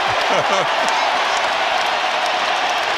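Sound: arena crowd chanting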